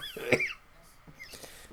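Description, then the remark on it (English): A single sharp cough, fairly loud, followed by a few softer breathy throat sounds. No one speaks. “But instead I coughed.”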